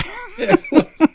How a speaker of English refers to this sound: Sorry, I got a cough too.